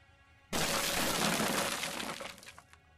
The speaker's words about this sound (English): A crash, somewhere in the apartment. Then a window shattered, sending shards of glass flying everywhere.